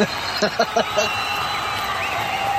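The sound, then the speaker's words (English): A large crowd cheers and applauds in a dense, steady roar, with a few louder bursts of voices near the start and a constant wash of noise throughout. “Or like something bigger.”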